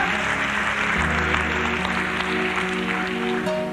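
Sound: audience clapping hands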